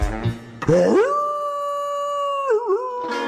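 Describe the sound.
A single long wolf howl in a werewolf song rises sharply, holds a steady, drawn-out note for a couple of seconds, then wavers and dips at the end; loud, with no talking over it.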